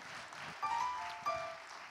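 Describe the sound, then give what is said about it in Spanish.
A crowd applauds steadily in a continuous wash of clapping, with two short tonal whistles or cheers rising above it partway through. “Give all them a big hand. Denles un aplauso.”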